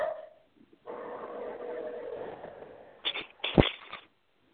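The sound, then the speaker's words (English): A dog, let indoors during the rain, lets out a drawn-out, whiny vocal sound, then a few short, sharp barks in quick succession, with no talking. “Did you let the dog in during the rain? Yep, dog in.”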